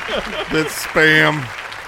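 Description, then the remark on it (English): A crowd cheers and claps steadily, with a couple of loud whooping voices sliding downward in pitch over the dense, continuous applause. “They're cheering for me, guys.”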